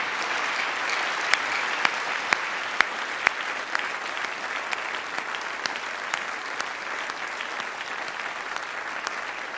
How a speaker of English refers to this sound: And really, we do clap, and I so appreciate that. We want to. But, you know, that's all we can do, right?